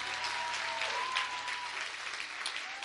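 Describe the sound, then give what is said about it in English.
A crowd claps its hands for the Lord, a dense, even wash of many hands applauding at the same level throughout, with a faint sustained tone humming underneath. “Well, clap your hands one more time for the Lord.”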